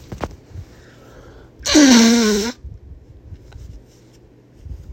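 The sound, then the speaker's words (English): A single loud nose blow lasting under a second, a harsh, breathy honk with a wavering nasal pitch, set against quiet background rumble and faint shuffling. “I gotta blow my nose.”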